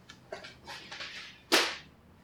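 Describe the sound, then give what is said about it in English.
A power cord being knocked over: a few soft scuffing rustles, then one sharp, loud whip-like snap that quickly trails off. No one speaks. “I accidentally knocked over the power cord. It went flying, but didn't hurt anything, shockingly.”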